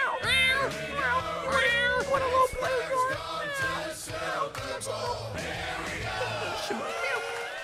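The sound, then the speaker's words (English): A rowdy sports-chant style jingle, a Cincinnati Bengals edition of a football fight song, plays loud and continuous, with a chorus of voices singing over a band and people meowing like cats in place of some of the chant. “There it is, the Cincinnati Bengals edition of our Here We Go song.”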